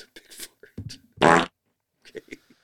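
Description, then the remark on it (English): A loud fart sound effect from a soundboard button blurts out once in a brief buzzing burst, with snatches of people talking just before and after it. “He's a big fart.”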